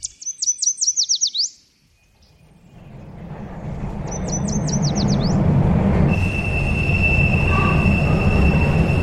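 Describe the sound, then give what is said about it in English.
Rapid bird trills fade into a growing rumble as a subway train rolls in on the ride to Harvard Square, its wheels letting out a steady, high-pitched squeal against the rails that holds to the end. “It's just a short subway ride from our studios to a university you might have heard of.”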